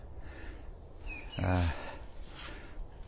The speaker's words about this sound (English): If you can hear that bird, and you know your birds, or specifically a bird song, which I'm not so good at. What is that bird?